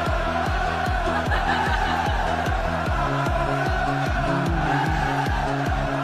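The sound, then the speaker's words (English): A large crowd in the cheap seats after a show cheers and chants in unison, its loud, steady roar driven by a regular pounding beat, like rhythmic clapping or stomping, that continues without pause. “That was actually the cheap seats crowd after last week's show.”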